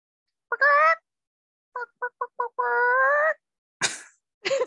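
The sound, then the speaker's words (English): A person imitates a chicken loudly: a nasal squawk, four quick clucks, a long drawn-out cackling note, then two harsh, raspy squawks. “You want to hear my chicken impersonation?”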